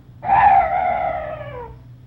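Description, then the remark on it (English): A strange night bird call: one drawn-out, wailing cry that begins abruptly, holds a strong clear tone, then slowly slides downward and fades after about a second and a half, with no voices. “Oh, what's that? Oh, some night birds.”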